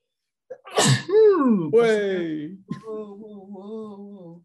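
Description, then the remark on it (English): A single loud sneeze bursts out with a sharp explosive hiss, followed right away by drawn-out voiced sounds and then someone talking. “Bless you. Right. Oh my God, it might happen again.”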